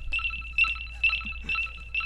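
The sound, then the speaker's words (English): An alarm system beeps after the device is lifted and moved: a high, thin electronic tone pulses steadily about twice a second, each beep bright and shrill, over a low constant hum. “It didn't work, but I lifted it, and so that's an alarm system saying that it's not working, that it's being taken, being moved,”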